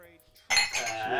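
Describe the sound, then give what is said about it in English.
Glasses of Irish whiskey clink together in a toast, a sharp bright knock halfway through followed by sustained ringing and light clatter, fairly loud, with no one talking. “Can we go cheers to that? Yeah, cheers.”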